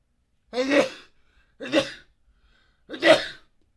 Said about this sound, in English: Holy God. Dude, you ever sneeze and like, dude, I've been sneezing and like my entire, like, I'd be getting tired.